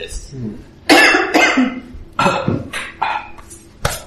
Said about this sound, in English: That was a real cough.